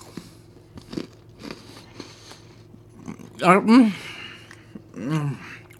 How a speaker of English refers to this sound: So yeah, I'm going to take a crunchy bite. Wasn't that crunch?